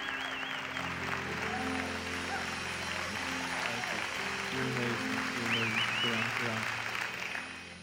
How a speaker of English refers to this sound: So I'm gonna ask everyone to do me a favor. Let's all stand up on our feet right now, put our hands together, and give Pastor Brett Fuller a huge Church of the King welcome. Come on, guys.